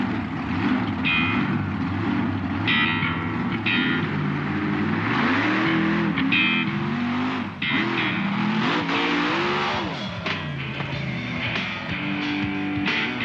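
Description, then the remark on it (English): A loud vehicle engine revs hard and continuously as the vehicle launches and jumps over a set of parked cars, catching a little air, its pitch repeatedly climbing and dropping as it accelerates, with a rough, roaring tone throughout and no voices. “That thing left real good, went over that first set of cars there, caught a little air, come in here, and you got a little crossed up there going to that second set.”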